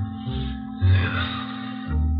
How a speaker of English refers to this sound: At 5:05, it started to thunder. That's all we need now. Thunderstorm.